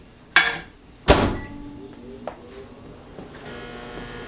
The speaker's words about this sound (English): Let's put this to the side, and I'm gonna put some cheese and just put it in the microwave real fast. Can't have an egg sandwich without cheese. All right, so here we go, put it in the microwave.